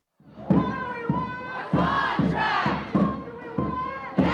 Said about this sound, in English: It's been kind of rainy and dreary in New York City lately, but on Wednesday, the sun was out as crowds of people rallied outside of News Corp's corporate offices in support of the HarperCollins union workers.